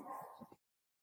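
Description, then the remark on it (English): A dog that had been sleeping all day lets out a short burst of barking on hearing a voice, a couple of quick overlapping yaps, moderately loud, cutting off abruptly into silence. “he's been sleeping all day, and I think my daughter's home, and he heard my voice, and he was like, man, that guy's awful. I'm going to start barking.”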